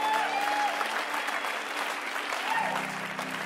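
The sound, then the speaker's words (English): An audience that includes family and friends claps steadily for a group of people for a few seconds, a dense, continuous wash of applause at even loudness with a faint tonal hum underneath. “can we give these guys a massive round of applause?”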